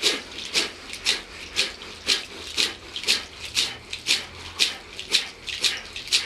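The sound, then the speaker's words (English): Rapid, rhythmic breath-of-fire breathing in and out through the nose while pumping the navel, about two to three sharp hissing breaths per second, each a short airy burst, steady and moderately loud with no talking. “And this is breath of fire. It's a rhythmic breathing in and out through the nose.”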